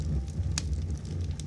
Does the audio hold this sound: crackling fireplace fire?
yes